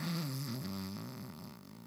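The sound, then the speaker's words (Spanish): A person imitates a snore: a drawn-out, droning vocal sound about two seconds long, fairly loud, wavering in pitch with a rattly flutter in the middle before trailing off. “Eso es para roncar.”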